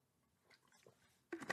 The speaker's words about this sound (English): Child, let me stop and sip my water.